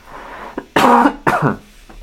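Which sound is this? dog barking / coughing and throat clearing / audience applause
coughing and throat clearing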